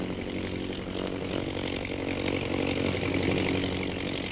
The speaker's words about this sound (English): see how those bombing planes are circling? Yes. Both the bombers and scouts are concentrating. One's coming this way.